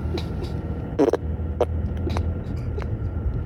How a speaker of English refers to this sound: All right, here's fart number six. How about a driving down the street fart for you